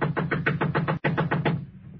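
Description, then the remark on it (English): A rapid, steady series of loud knocks on the door of a house with a porch, briefly interrupted by a split-second pause before the knocking resumes and then trails off into quiet. “Knock again.”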